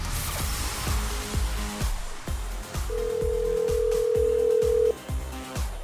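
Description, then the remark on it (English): A phone is dialed with a few short tones to call a contest draw winner, then a single steady ringback tone sounds for about two seconds, all over a thumping, rhythmic music bed. “but like always, it's time to make another phone call. We could be calling you right now.”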